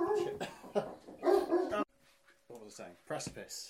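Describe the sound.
A dog barks in a quick run of loud yaps, pauses briefly, then lets out a few more sharp barks, with a voice mixed in.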